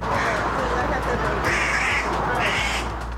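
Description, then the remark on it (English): Crows caw harshly several times, with two louder, drawn-out calls standing out over a steady, dense background hum. “When crows attack and why these birds are so angry right now.”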